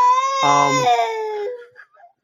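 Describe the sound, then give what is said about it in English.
A teething baby girl wails in one long, strained, high-pitched cry that wavers and breaks, then trails off into a couple of faint whimpers. “Sorry. Little one's teething.”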